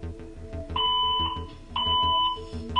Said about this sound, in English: So it's kind of darting between the school with the alarms going off and people saying we're on lockdown